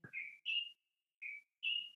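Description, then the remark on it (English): A small bird sings clear, high whistled notes in two pairs of rising chirps separated by a short pause, fairly loud with no talking. “Can you hear that little bird? He's like, oh, she was serenading us.”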